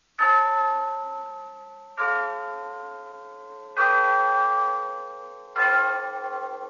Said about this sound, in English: Yes, there's the clock in Glen Falls Town Hall telling us it's time for Renzo's story of Big Sister.